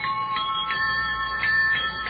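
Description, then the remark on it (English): An ordinary bicycle bell fitted to a jet bicycle rings over and over in quick, even strikes, its bright metallic tone ringing on steadily between them. No one speaks. “And of course, so no one guesses it's a jet bicycle, we have installed an ordinary bicycle bell.”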